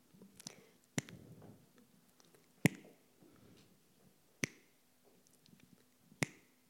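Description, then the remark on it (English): Slow, evenly spaced ticks of a clock: four sharp, crisp clicks about two seconds apart, with a few fainter clicks in between over a quiet, low background hum. “And with every tick of this clock, you are less likely to be loved.”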